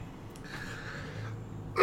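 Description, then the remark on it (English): A person with a dry throat gives a single sharp, dry cough at the very end, loud and abrupt, after a stretch of quiet, faint breathing. “If you're coughing, that does not automatically mean if you feel it in the lungs, then yes, it might be a problem.”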